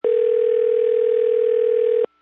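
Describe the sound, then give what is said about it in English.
A steady, unbroken telephone tone hums at a single mid-low pitch for about two seconds at even loudness, then cuts off abruptly into silence, heard when calling the City of Odessa Water Hotline. No voices are heard. “Thank you for calling the City of Odessa Water Hotline.”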